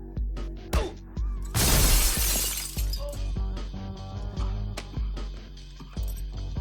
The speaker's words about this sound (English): Punches himself in the face. Bashing himself. Like, it's a solid bash up of himself, isn't it? Into a glass table.